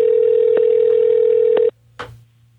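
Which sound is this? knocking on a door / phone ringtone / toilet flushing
phone ringtone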